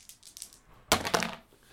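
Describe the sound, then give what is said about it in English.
Faint light rattling gives way to two sharp, bright clatters of dice, a d6 and a percentile die, tumbling onto a hard surface, each quickly fading, with no voices. “Will you roll a d6 and a percentile dice for me?”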